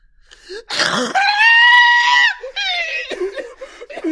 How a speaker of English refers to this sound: Ignore the scream. Tune it out. It is background noise to you, like the late night intrusion of a neighbor's television set. It may shred your nerves. It may haunt your sleep for years to come. But for now, you must ignore it.